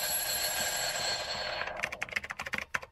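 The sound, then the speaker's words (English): A short produced audio sting: a bright, sustained ringing tone for over a second, then a run of quick, rhythmic ticking clicks, with no one talking. “So why don't we hit the sting?”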